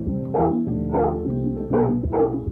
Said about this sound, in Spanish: Y parece que tienen un perro también. Sí, y creo que es un perro muy grande.